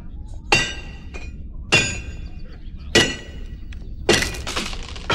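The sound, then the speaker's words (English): A blacksmith strikes an anvil with a wooden bottom using a tiny hammer, each blow ringing metallically: four evenly spaced clangs, then a quicker pair of hits at the end, over a low background rumble. “I mean, in fairness, this blacksmith here, he sees the anvil vibrating and moving as he's hitting it with a tiny hammer.”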